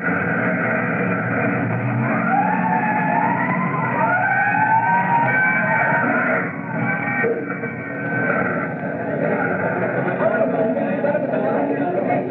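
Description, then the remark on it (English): A fire truck siren wails in rising and falling sweeps over a heavy engine rumble as fire trucks respond to a call in the Dulcimer Street district, with a muffled hubbub of a gathering crowd's voices throughout the narrow-sounding, steady-loud recording. “But the usual crowd gathers, surging and milling around the big fire trucks.”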